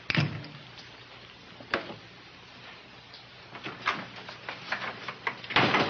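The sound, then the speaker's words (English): A back door is opened and closed, with a sharp clunk at the start, a click partway through, scattered rattles of the latch and a final heavier thud. No one speaks. “Why the back door, Mr.”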